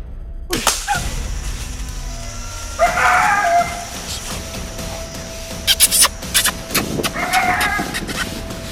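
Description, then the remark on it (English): Wild turkeys gobble twice in the morning near Mountville, each call a short rattling burst, with sharp snapping clicks and a steady outdoor hum in between. “I bet these birds gobble probably close to 100 times.”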